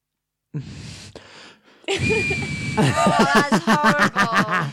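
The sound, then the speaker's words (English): Someone whistles through their nose: breathy huffs, then a thin, steady high whistle that breaks into a quick, rhythmic run of short whistled pulses, fairly loud and without any talking. “So, it's a whistle through the nose from them.”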